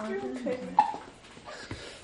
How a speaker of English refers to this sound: Little hiccups. Oh, oh. Definitely spit up. Yeah, help. And she does have hiccups.